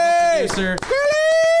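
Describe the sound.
Loud, drawn-out cheering: a sustained whooping voice holds a high tone, dips briefly in pitch, then rises and carries on, with a few short bursts of crowd noise underneath.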